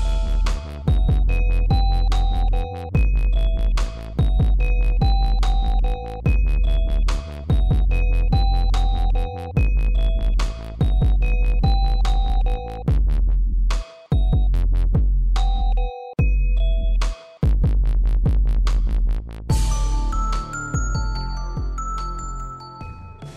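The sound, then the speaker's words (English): Loud, steady pinging electronic beeps repeat in a regular rhythm over a deep, pulsing bass throb, with a few brief cut-outs and a busier, glittery texture toward the end. No one speaks. “The beeps, the creeps, and the sweeps?”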